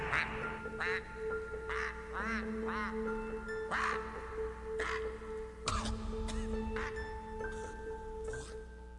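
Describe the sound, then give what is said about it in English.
A man's voice imitates a goose with honking, duck-like quacks in a series of nasal, rising calls spread irregularly across several seconds, loud, over a steady low hum. “Quacking like a goose, but really it sounds more like a duck.”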